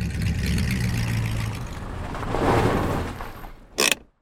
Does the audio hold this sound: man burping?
no